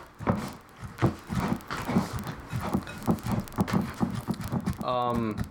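Horse hooves clip-clop in a quick, steady rhythm of sharp knocks for several seconds, followed by a brief high, wavering whinny-like sound at the end.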